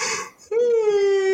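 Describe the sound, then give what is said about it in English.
A single sneeze bursts out abruptly after a brief hush, ending in a drawn-out, voiced, whiny tail. It is loud, with a noisy stretch just before it. “Bless you. Excuse me.”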